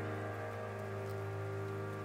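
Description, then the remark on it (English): Steady rain patters with a soft, even hiss, blended beneath sustained low musical tones that hum continuously throughout. No voices are present. “Sounds like some rain as well.”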